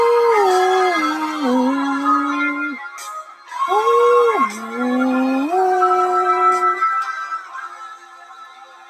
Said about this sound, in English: I mean, dogs of society howl. That fucking dog that comes around and howls at me is really gotten on my nerves.